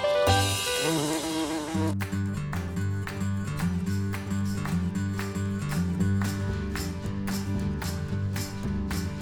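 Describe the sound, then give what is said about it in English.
A loud, steady insect-like buzzing drone, like a bee or wasp, holds throughout, punctuated by regular sharp rhythmic hits, with a brief denser tonal burst at the very start. “was a bee, a pretty little bee.”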